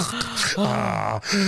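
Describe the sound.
A voice imitates heavy, open-mouthed breathing with drawn-out, voiced 'ah' sounds in three close bursts, loud, like breathless groaning, mimicking someone who can't keep their mouth closed and breathes hard.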